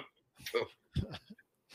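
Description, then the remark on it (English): Two short, harsh coughing bursts about half a second apart, fairly loud and rough, followed by a brief softer throaty sound. “Gotta make sure you take care of that cough after we're done with the show there.”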